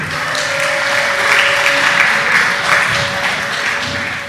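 A crowd applauds steadily, a dense wash of many hands clapping at once, loud and sustained for the whole few seconds with no voices standing out.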